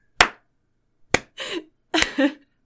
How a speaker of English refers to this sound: Actually, you deserve a full round of applause.